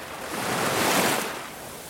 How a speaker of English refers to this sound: Take a deep breath as you allow the sacral chakra to feel the loving caress of the ocean waves pass through it, joining it to the natural rhythm of the earth.